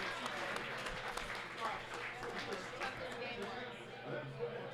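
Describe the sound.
An audience applauds steadily for several seconds, a dense, continuous patter of many hands clapping, with crowd voices murmuring underneath.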